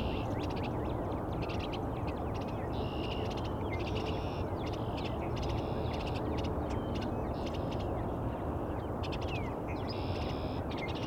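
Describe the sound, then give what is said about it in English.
Several eastern bluebirds squabble near a nest box, their short chattering calls bursting out again and again over a steady rush of outdoor wind and field noise. “They're all arguing over who's going to get this bluebird box.”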